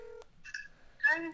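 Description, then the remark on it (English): A phone dials a contact: a few short, steady electronic keypad tones with brief gaps between them, ending in a louder, brighter buzzing tone. No one speaks. “Just because it's the last person on my contacts that I think I can call randomly and they might pick up.”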